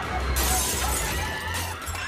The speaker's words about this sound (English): A new skateboard turned into a bludgeon to break a window for a getaway, again with gunshots in the background.